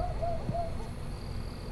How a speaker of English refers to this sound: There's a bald eagle right here.